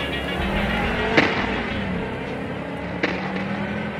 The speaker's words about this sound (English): the stolen car speeds away, disappearing behind a cloud of dust